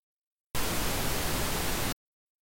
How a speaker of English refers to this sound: That humming static noise. Get a little louder. Where's it coming from within this? The freezer. The freezer.